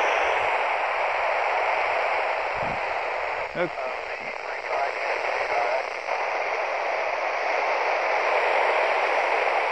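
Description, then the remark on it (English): Steady hiss of handheld radio static after losing a satellite's signal as it nears the horizon, loud and unbroken, with a few faint garbled blips of a transmission briefly poking through near the middle. “Alright, I think we've lost the bird, but I'll do one more try here.”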